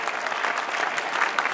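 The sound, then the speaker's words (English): An audience claps steadily in response to a testimony, dense overlapping hand claps forming a continuous bright patter that stays at an even, fairly loud level throughout, with no voices standing out. “If you heard this testimony, you should start clapping by now.”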